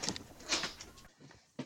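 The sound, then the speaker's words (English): A door slides open with a brief rushing, scraping noise lasting about a second as it is opened to let a cat in, followed by a quieter pause and a couple of soft knocks. “Sorry, one second, I just need to rescue my cat.”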